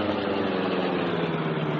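The engine of the Black Beauty car runs at a steady idle at a cove by the shore road, a continuous low rumble with an even mechanical hum, fairly loud, with no talking over it.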